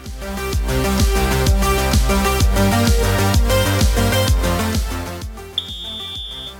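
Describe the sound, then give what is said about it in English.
A single steady, high-pitched whistle blast, signalling runners to turn during a running workout, sounds for about a second near the end, cutting over driving, beat-heavy music that plays throughout. “Turning in 10 seconds on the whistle again.”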